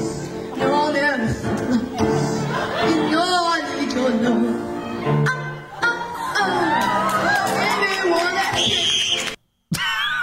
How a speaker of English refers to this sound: Fucking screaming at the end. Some baby got fucking punted at the end of that.